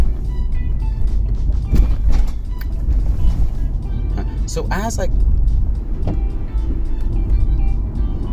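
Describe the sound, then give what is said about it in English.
Steady low engine and road rumble from inside a moving car as the speaker gets in and drives to a store to buy IPA beers, with scattered clicks and knocks, a brief warbling tone partway through, and a faint muffled voice underneath. “As I got into the car, I wondered, what kind of IPA should I drink?”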